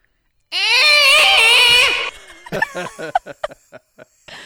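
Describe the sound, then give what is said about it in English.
A person imitates a Godzilla scream: a loud, raspy, wavering roar held for about a second and a half, then breaking into a string of short laughing bursts. “All right, so why don't we leave everybody with your best attempt at a Godzilla scream.”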